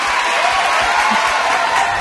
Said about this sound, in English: Applause. And cheering. And kids cheering.